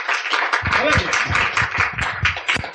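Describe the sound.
An audience breaks into applause, a dense, steady wash of many hands clapping that holds at full volume for a few seconds, with some voices calling out beneath it.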